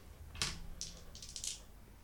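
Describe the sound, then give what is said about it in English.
A D8 and a D6 die clatter and tumble across a tabletop, missing the dice tower, in a few quick, irregular bursts of hard clicking taps, soft, with no voices. “Yeah, I missed the dice tower, but I rolled a 6.”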